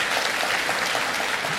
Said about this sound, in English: Let's hear if you immigrated to this country, you're here, give me a big round of applause if you immigrated to this country.